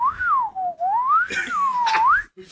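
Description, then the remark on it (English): A person whistles with their mouth to imitate a slide whistle, a single continuous tone gliding up and down in smooth wavy swoops for a couple of seconds, fairly loud. “Okay, I'm going to try doing a slide whistle.”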